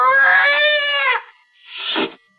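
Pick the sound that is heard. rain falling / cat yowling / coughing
cat yowling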